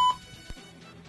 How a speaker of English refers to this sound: Why are you beeping hugs? Oh, no. Oh, their hugs are. Their hugs are. Because the type of hugs I'm talking about need beeping.